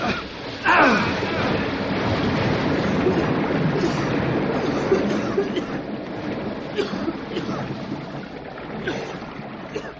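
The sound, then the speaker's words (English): A sudden loud surge of water bursts out as a stuck door is pulled open on a room filled with water up to the ceiling, and keeps roaring in a heavy, continuous rush, slowly easing off toward the end. “If this place is full of water, it'll come rushing out in a big hurry.”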